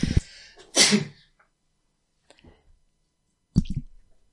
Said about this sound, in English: And that wasn't what Poirot was about to say, was a distant sneeze as I attempt to mute my microphone.